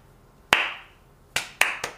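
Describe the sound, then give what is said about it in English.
A slow clap from the character Andy: four sharp, crisp hand claps, the first standing alone, then three more following at a gradually quickening pace, each leaving a brief ringing tail. No one speaks. “Miles sits back, proud of himself, and he hears a slow clap.”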